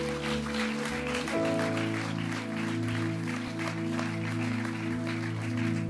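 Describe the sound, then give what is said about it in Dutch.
A church audience claps steadily throughout for a man of God, a dense crackling patter over sustained keyboard or organ chords that shift to a new harmony about a second in. “Geef hem een applaus. Give him a hand.”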